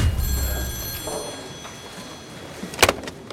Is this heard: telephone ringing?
yes